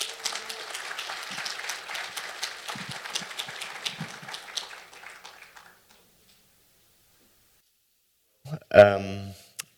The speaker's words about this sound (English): So if you could please give a round of applause in welcoming